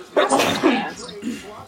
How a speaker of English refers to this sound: Excuse my sneezes here, folks.